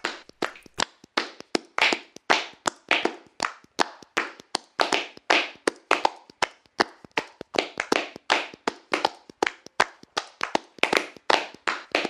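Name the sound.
hands clapping and tapping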